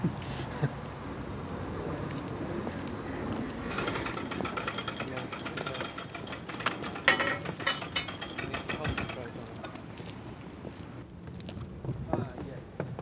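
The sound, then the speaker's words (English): Canal lock gates swinging shut as a narrow boat comes through, with a run of irregular knocks and clunks over a steady rumbling bed of noise, muffled voices faintly in the background. “Gates of the lock are just closing and a narrow boat's coming through.”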